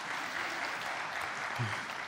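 An audience claps for the previous week's speaker, steadily in a dense, continuous wash of many hands, sustained at an even level for the full couple of seconds, with a brief low murmur of a voice near the end.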